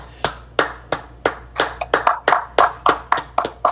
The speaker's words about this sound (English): He just graduated college. Let's give him a big round of applause for that.